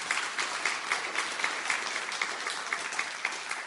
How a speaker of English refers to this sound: and they're seeing around 450 people on Sunday mornings, and more importantly, clap, that's awesome.